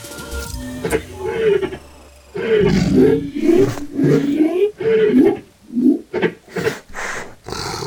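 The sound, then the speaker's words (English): Big cats roar loudly: a long, rumbling snarl with a low growl underneath, then a string of short, pulsing grunting roars that rise and fall in quick succession. “The cats are turning towards us.”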